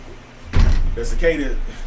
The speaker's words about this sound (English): Let me close the door for this. The cicada's trying to get it.